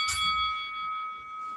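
A single bell is struck once, a bright clang that rings on with a steady metallic tone, fading slowly over more than a second. No voices are heard.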